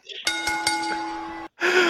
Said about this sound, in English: Please ring that bell.